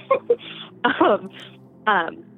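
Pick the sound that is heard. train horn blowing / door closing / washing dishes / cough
cough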